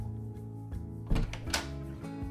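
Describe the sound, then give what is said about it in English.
An office door being opened: a dull thunk, then a sharper latch click a moment later, with softer bumps around them over a steady low hum. No one speaks. “goes to the door to open it for Colin”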